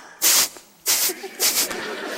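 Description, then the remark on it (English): A voice imitates a small Shih Tzu dog snorting by the table at mealtime to let her owner know she is there: three sharp, breathy bursts of hissing air, each roughly a third of a second, fairly loud, with short pauses between them. “I don't know where she picked it up, but she snorts so that I'll see that she's there.”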